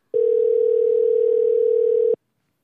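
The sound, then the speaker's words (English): A single steady telephone ringing tone on an outgoing call made during a morning radio show, one flat two-second electronic burst, clear, then silence, with no voices. “See if he answers the phone.”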